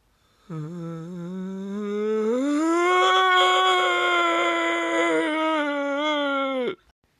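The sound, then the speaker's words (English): A voice imitates an air conditioner with one long, steady humming drone lasting about six seconds, its pitch sliding slightly upward partway through before cutting off abruptly. “Aircon says,”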